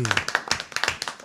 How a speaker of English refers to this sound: Oh, the claps. I love it.